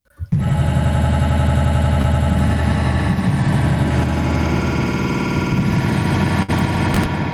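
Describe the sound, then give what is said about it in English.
A truck engine cranks and catches after a brief sputter, then settles into a loud, steady, rumbling idle with a low, throbbing rhythm that runs to the end. “Who's starting their truck?”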